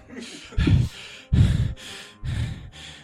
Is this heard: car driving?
no